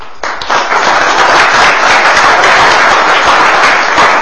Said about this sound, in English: I'm going to step aside and ask Senator Sessions to come up. I hope you'll give him a round of applause, and we'll get started.